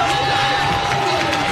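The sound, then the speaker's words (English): A large stadium crowd of Oakland high school football fans roars and cheers continuously for their defense on third and 14, a dense, steady wall of voices at a loud, even level with no pauses or single clear voice standing out. “Listen to these Oakland fans cheering on their defense, third and 14 for CPA from the 30 of Oakland.”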